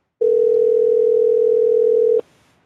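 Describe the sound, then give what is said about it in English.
A telephone line ringing on the caller's end: one steady, loud electronic ring tone lasting about two seconds, then cutting off into quiet. No voices. “And, oh, I hear it ringing.”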